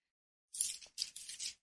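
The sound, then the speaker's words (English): Book pages being turned to find chapter 17, section 5, The Healed Relationship, on page 362: a quick run of soft, crisp paper rustles and flicks in several short bursts, with no voices present. “for me, turning the pages.”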